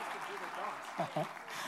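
A crowd claps in a steady, dense patter that fills the whole stretch, heard from a little distance, with a couple of brief vocal sounds poking through the applause.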